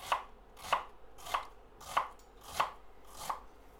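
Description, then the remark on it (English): A knife dices an onion on a board, chopping lengthways with a claw technique in fairly thick cuts: six evenly spaced, crisp thunks about every half second, each a sharp mid-pitched chop with a brief tail, no voices. “So you just want to firmly and with a nice sort of claw technique, just chop lengthways like that.”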